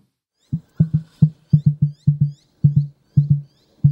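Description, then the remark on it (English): An emu's drumming call: deep, hollow booming thumps repeated in quick pairs and triplets, a steady low pulsing throb with no other sounds or voices. “Now, this bird makes such interesting drum-like sounds that I never knew they made.”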